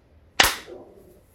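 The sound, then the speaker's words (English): A single sharp hand clap, made after a countdown to sync a recording, cracks out of near silence, bright and snappy across the whole range, then fades quickly with a short ringing tail. No one speaks. “The dog, when I clap. They like got mad.”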